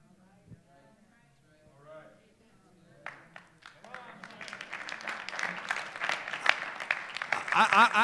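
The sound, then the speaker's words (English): Audience applause for God starts with a few scattered claps and swells into sustained, loud clapping from a crowd, with a voice speaking faintly underneath at the start. “I don't need a hand clap, but God needs a hand clap, because God has saved many of people in this place from a lot of dangerous situations.”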